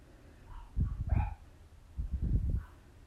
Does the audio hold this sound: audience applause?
no